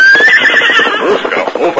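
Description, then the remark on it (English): A horse halts abruptly and whinnies loudly, a drawn-out, wavering neigh lasting a couple of seconds, with faint hoof clatter and a voice speaking underneath. “Silver unaccountably sensed the nearness of peril”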